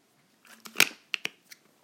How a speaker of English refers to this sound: First track, let me just have a little sip of my fluid here.